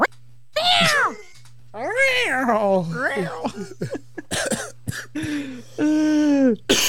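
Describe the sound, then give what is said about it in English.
A person imitates a cat, letting out a series of drawn-out, wavering meows, broken by short clicks and throaty noises, with a low steady hum underneath. “Look at me. I'm a kitty.”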